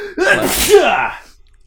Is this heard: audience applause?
no